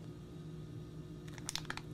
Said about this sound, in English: And you just cut one corner of the bag. You can also use scissors, and it's that simple. You just cut it.